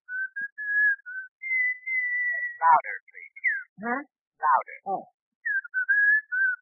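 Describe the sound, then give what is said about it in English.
A man whistles long, steady notes into a telephone while standing about 5 feet back from it, briefly broken off by a short spoken exchange, then he whistles again, clear with a thin, narrow tone. “Now, whistle.”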